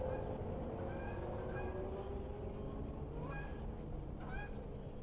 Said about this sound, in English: The geese are returning. Can you hear them? Only two, just a pair of Canada geese. And their call doesn't sound quite right. It sounds like an alarm call instead of the casual call of the migratory flight.